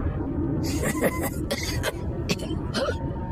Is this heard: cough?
yes